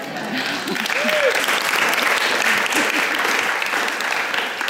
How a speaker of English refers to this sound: P.S. It's my birthday, so please clap and be nice.